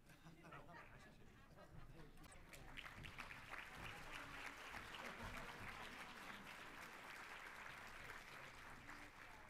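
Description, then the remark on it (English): An audience breaks into steady applause as people are each given a card as a token of appreciation and have their hands shaken; the applause swells after a couple of seconds and holds, dense and continuous, with faint voices murmuring underneath. “And you can clap if you want.”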